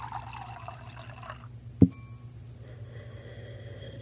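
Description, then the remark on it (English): Water pours steadily into a glass for about a second and a half, then stops; a single sharp drip or clink follows, and a faint background hum lingers afterward. “Let's get you some water, bud.”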